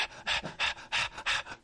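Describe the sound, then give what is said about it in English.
A dog named Bo pants rapidly and loudly close to the microphone, a steady rhythm of breathy bursts about every third of a second with no talking. “I can hear you breathing in the mic.”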